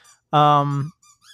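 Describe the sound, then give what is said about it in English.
A dog squeaks a squeaky dog toy, letting out one loud, drawn-out honking squeak, then a couple of faint, higher little squeaks follow. “Is that a dog toy? It is a dog toy, yeah.”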